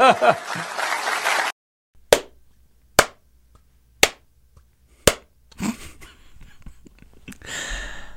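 At a Pete Buttigieg speech, after a brief burst of speech, four lone, sharp claps from the crowd ring out roughly a second apart into near silence, a thin and awkward smattering rather than real applause, before faint murmuring returns.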